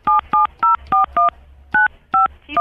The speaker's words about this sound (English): Please don't punch it in on the phone. Give it to me.